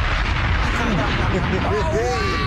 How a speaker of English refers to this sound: Let's drop some bombs.